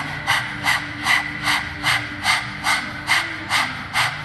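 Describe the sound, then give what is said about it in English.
Rapid, rhythmic panting with the tongue out, like a dog, done seated with arms raised as the setup for Breath of Fire: about ten quick, breathy huffs at a steady pace, moderately loud, with no talking. “Stick the tongue out, begin panting like a dog.”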